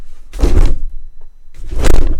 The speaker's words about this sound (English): The fucking door won't open.